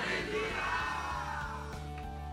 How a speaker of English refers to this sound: Somebody shout hallelujah.